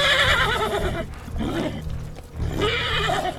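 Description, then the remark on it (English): Horses whinny in agitated, overlapping bursts, loud, with shrill neighs rising and falling over a steady low rumble and no talking. “The horses are fucking panicked.”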